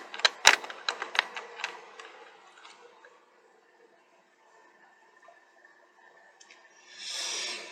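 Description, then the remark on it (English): A cluster of bright metallic jingles and clicks from a set of house keys, fairly loud for a few seconds, trailing off into quiet hum before a brief rush of noise. “That's my house keys.”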